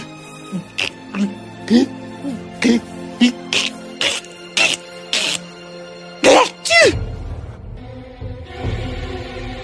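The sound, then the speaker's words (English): A series of short, breathy vocal gasps builds up to one loud sneeze by a prince during a wedding ceremony, followed right after by a low, steady rumbling of thunder. “As the prince sneezed, there was a thunder, and everybody looked around to see what would happen.”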